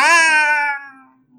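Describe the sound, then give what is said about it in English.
A single drawn-out, falling meow imitated by a human voice, loud, tapering off over about a second with no other sounds. “He says, kitty!”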